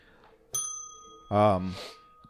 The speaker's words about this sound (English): Ring the bell.